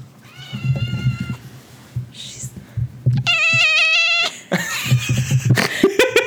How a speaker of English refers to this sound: I have one cat that whispers and one cat that only screams.